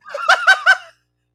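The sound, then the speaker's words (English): A short bird call of three quick, warbling gobble-like bursts in rapid succession, fairly loud, heard on its own with no talking, lasting under a second. “I'm losing to a bird, brother.”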